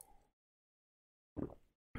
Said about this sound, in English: I'm going to have a little sip of water.